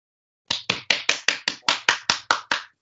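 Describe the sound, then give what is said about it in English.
A short burst of applause: about eleven crisp, evenly spaced claps in a steady quick rhythm. The claps are sharp and fairly loud, with no talking over them. “I hope that was the crowd welcoming us in.”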